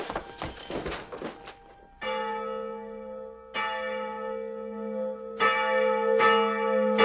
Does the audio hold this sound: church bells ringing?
yes